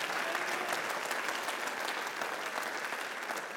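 A large group claps steadily, the dense patter of many hands blending into a continuous wash of applause that holds at an even, fairly loud level throughout, with no voices standing out.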